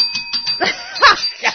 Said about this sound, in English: I dropped the bell. I'm going to kill that bell. I'm going to throw it out the window.